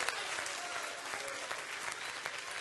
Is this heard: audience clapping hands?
yes